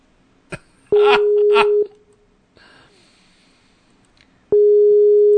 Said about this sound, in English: Of course, now he won't pick the phone.